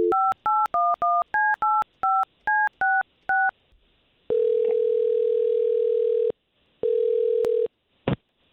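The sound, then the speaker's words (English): A quick run of about eleven beeping touch-tone digits is dialed to phone a woman, followed by two long steady ringback tones with a pause between them, then a brief click as the line picks up. “Why don't we call her, and let's find out if we can get to the bottom of this, all right?”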